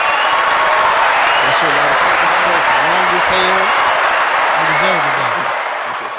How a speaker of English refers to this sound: Are y'all ready for this long ass applause?